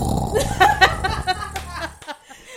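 A gruff, bear-like growl sound effect rumbles loudly for about two seconds, its voiced tone rising and wavering before cutting off abruptly into brief quiet.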